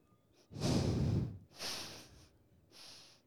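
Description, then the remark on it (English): A person imitates the dog Simba sniffing the air with three breathy nasal bursts: a long strong one, then two shorter, fainter sniffs, with no talking. “And he'll just stand in the air going like. Sniffing.”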